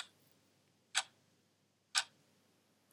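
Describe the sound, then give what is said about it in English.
A clock ticks steadily, crisp single clicks spaced about a second apart, clear against a quiet, nearly silent background with no voices. “Stop the clocks.”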